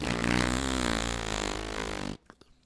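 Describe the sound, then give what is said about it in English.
A loud, sustained Bronx cheer: a buzzy lip raspberry lasting about two seconds with a slightly wavering pitch, cutting off abruptly and followed by a few faint clicks. “That's the Bronx cheer.”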